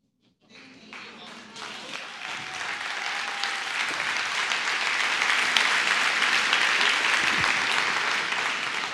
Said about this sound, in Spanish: Allí, alguno está como, no entendí. ¿Por qué aplauden?